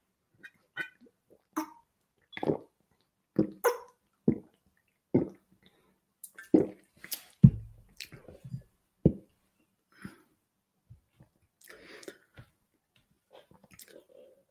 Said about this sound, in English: Just drop us a line in the comment box there while I take a drink of my water.